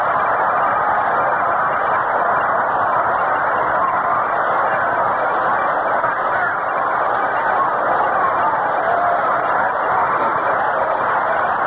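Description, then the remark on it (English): A big stadium crowd of Braves baseball fans keeps up loud, rhythmic applause calling for a rally in the eighth inning, a dense and steady wash of clapping and cheering that runs unbroken for the whole stretch with no voices standing out. “Brave fans start that rhythmic applause now, calling for a rally.”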